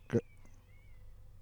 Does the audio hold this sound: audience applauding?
no